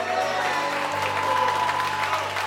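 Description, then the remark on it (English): A church audience claps for Jesus together in a dense, steady burst of applause that stays loud throughout, with a low sustained tone humming underneath. “No, I need some more claps for Jesus.”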